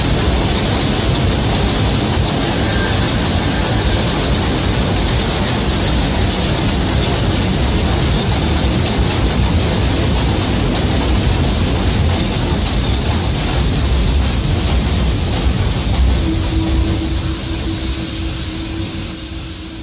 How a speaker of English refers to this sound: Express train. The next stop is New Lots Avenue.